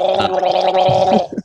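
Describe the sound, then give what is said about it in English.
A brief, bubbly glug of someone drinking water, a steady gurgling throat sound lasting over a second and ending in a couple of quick gulps, with no talking. “that's pathetically small glug.”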